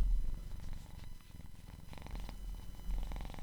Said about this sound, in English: Well, you might hear some purring. She's clearly pleased with herself for disrupting my podcast.